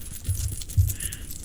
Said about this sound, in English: do you want to play Paul's Coins? Oh, go on then. How much money is in this pocket?